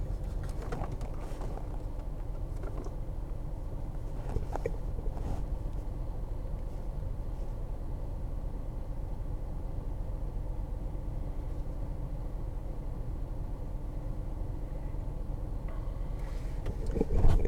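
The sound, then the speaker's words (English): A steady low rumble of engine and road noise fills the interior, like riding inside a moving car, with faint intermittent clicks and a slight swell in loudness near the end. “Sorry, again, live from the car.”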